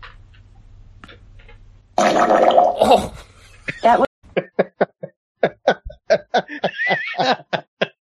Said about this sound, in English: Fart for me. Okay, here's Big Fart. Oh, shit. Oh. That was a deep one. Oh, yeah. Shall I play another fart sound?